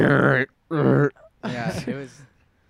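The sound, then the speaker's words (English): A person imitates a bulldog grunting: three rough, throaty voiced bursts, the first two short and steady with a brief pause between, the last longer and wobbling before trailing off. “My cousins, they have a bulldog, and it makes the weirdest fucking sounds all time.”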